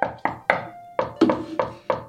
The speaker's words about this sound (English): Okay. Like, knocks on door. Again, just starts beating on it until it opens again. Just to be the most annoying as possible, you know.